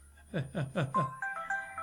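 A phone's text message notification tone for incoming texts from students: four quick, swooping chirps in a row, then a short run of steady electronic beeps, fairly clear with no talking over it.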